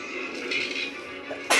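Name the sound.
sneeze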